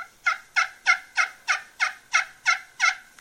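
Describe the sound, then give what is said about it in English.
A glass friction turkey call, held in the palm and played softly, produces a steady series of about nine soft, evenly spaced yelps, imitating a hen turkey, with no talking. “One, I can palm that call and I can get soft on it.”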